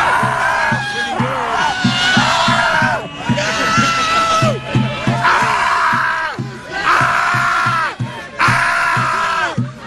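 A crowd of protesters screams at the sky together in long, anguished bursts, voices rising and falling in waves with brief dips between, loud and sustained throughout.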